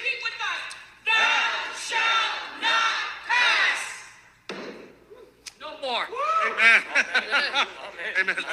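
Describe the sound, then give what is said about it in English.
A crowd erupts in loud, sustained shouting and cheering of praise, waves of voices rising and falling, then scattered whoops and excited cries continue over the din. “Let's lift it up and bang it. Hallelujah. Come on, give it a praise over.”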